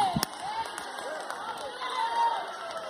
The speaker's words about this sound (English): I'm preaching good enough for some more shouting than that.